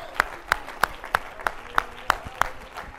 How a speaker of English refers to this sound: Oh, somebody, would you declare that in your spirit right now by clapping your hands?